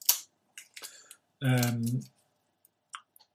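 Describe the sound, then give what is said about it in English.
Perforated paper packaging of a Yankee Candle, with the perforation running through the label, being torn open, heard as a few short, crisp ripping and crinkling bursts, with a brief voiced sound from someone in the middle. “They put the perforated paper right through the label on this one, which feels like a flaw. There we go. We're in.”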